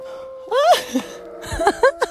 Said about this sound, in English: Whoa. Oh my God. Did you hear that dog howl?